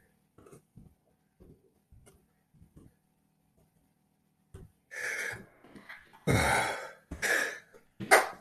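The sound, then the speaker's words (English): A half sneeze: faint mouth clicks, then sharp breathy gasps building to a loud, forceful burst of air that cuts off short, followed by a couple of quick huffs. “Wow, that was like a half a sneeze.”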